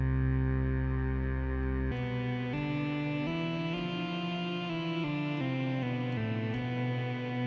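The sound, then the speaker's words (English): A sustained synthesizer tone shifts through a sequence of notes, each change blooming into a washy reverb tail that keeps the sound loud, dense and atmospheric throughout. “I like to say that reverb is a synthesizer's best friend, I'll tell you that.”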